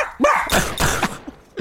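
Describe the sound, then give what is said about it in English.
A dog barks loudly, two or three quick, harsh woofs in a short burst, with a softer yip trailing at the end. “This is the dog barking to the redneck, and he's like, I understand, Rex.”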